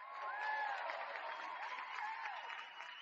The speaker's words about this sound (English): Round of applause, man. Let's give a round of applause for everybody who survived COVID.